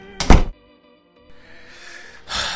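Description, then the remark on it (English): An office door shuts with a single heavy thud near the start, followed by a short quiet pause and then soft shuffling and room noise. “Shut the door behind you, would you?”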